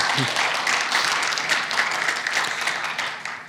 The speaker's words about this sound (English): So I really do appreciate what the praise team did this morning, because this is new. They came up with this morning, so well done, praise team. Yes, please clap.